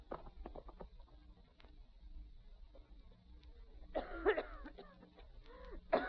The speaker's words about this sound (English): There now, honey. Try to stop coughing.